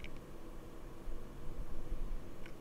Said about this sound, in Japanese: ASMR なんかではね、こういう音を取る必要があるので、逆にこのねファンのノイズが乗ってしまうことが問題になってきますね。